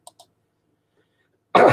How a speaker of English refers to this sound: I apologize for the cough there.